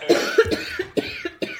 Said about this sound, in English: We made a cough.